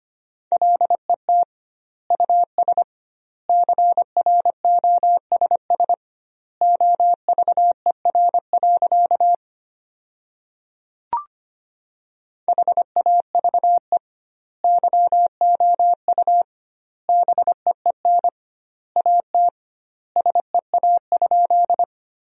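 Morse code sent at a brisk 25 words per minute with doubled word spacing, sending sentences built from the 300 most common words: a single steady mid-pitched tone keyed in quick dots and dashes, grouped into words separated by clear pauses, with a longer gap and a soft click midway.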